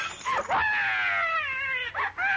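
A baby who has just been woken wails in loud, continuous high-pitched cries, with wavering bends in pitch and a brief catch of breath before the crying rises again. No one speaks.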